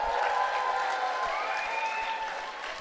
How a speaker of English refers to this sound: Great, right, well, very exciting to have Martha with us. Everyone give Martha a big round of applause.